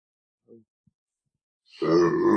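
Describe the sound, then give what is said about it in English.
A single loud sneeze bursts out near the end, preceded by a faint short intake of breath and a tiny click in otherwise near-silence. “Bless you. Pardon me.”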